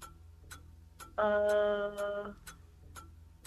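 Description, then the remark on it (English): A timer for a trivia quiz ticks steadily, about two sharp clicks per second, while a loud, bright buzzing tone sounds over the ticking for roughly a second partway through. No one speaks. “We got a timer here.”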